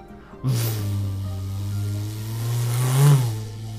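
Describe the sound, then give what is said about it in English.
A person imitates a car engine with a sustained, low, buzzing voice, holding the drone for several seconds before pushing it up into a brief rev near the end. It is fairly loud. “do your best car noise.”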